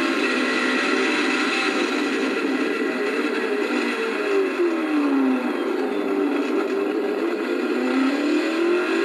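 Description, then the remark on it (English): A loud car engine roars continuously during a lap of a race track, its pitch rising and falling as it revs through gears and corners, with no voices over it. “This is my first time driving this car.”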